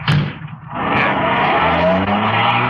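A car engine revs up and the vehicle pulls away with tires squealing, loud, the engine note climbing steadily as it accelerates off.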